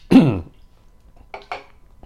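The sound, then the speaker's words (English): A person still getting over a cold, with congestion in the chest, gives a loud, rough throat-clearing cough, then after a pause two quicker, softer coughs in a row, with a faint final rasp at the end; no talking. “Can't get this stuff out of my chest. I'm still getting over that cold.”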